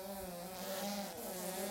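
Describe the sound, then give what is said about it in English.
Flies buzz in a steady, continuous drone, a soft hum with a faint wavering pitch. It carries on without pause and there are no voices. “The buzzing stopped.”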